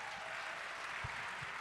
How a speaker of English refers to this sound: And now we're working on 3 more hotels with some hotel partners across Canada. Clap it up for that, please. That's incredible.